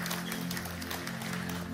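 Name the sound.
audience hand clapping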